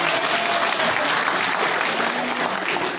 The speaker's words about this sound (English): Okay, please give me some applause, okay? If someone is clapping their hands, you all of you have to clap your hands also. Okay? Yes. Clap your hands, please.